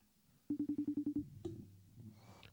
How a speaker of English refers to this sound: We're going to give my wife a call so you guys can hear